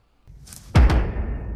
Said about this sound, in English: It's like, K-k-k-k. I guess it's the intro sound to Netflix is the House of Cards season 2 ending of Kevin Spacey doing like the two knocks.